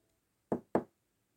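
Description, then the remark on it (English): Two crisp, hollow taps on wood land a quarter second apart, fairly loud, as Woodpecker Rupert, a woodpecker, pecks at bark, tapping everything, with quiet all around them. “And Woodpecker Rupert tapped everything.”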